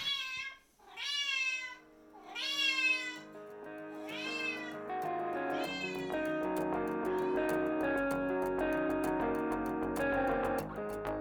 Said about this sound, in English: Like certain rides, she just wants to be moving, and she'll meow every time I stop. And then sometimes she's a little more chill. But she's not quiet about her preferences. That's for sure.